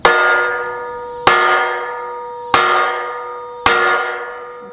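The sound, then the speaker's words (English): A large bell is struck four times as a demonstration by a person wearing leather gloves, at a steady, slow pace, each loud clang ringing out with a long, shimmering decay before the next strike. No voices. “So that's the idea behind the bells.”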